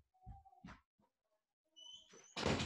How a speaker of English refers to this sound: So let me go close my door.